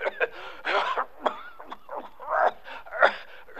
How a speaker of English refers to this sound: That's the bad cough he's got.